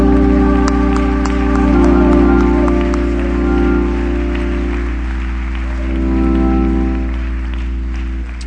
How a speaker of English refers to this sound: Now, would you clap your hands unto the Lord if you're going to do it by faith, believing?